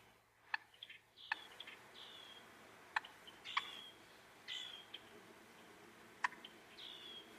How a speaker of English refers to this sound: Those are the turkey's alarm calls, which fit better with the composition than that classic gobble you might expect.